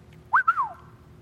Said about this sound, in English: what seems to have actually happened is that he wolf-whistled at her.